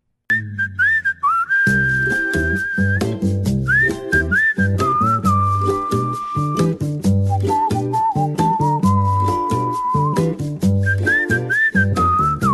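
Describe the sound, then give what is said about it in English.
A bright whistled melody carries a tune over a full instrumental backing, sustaining long notes and quick turns, loud and up front for the whole stretch with no talking. “You know, that whistle is almost as emotionally soothing as having your own portable storage unit on your property when you move.”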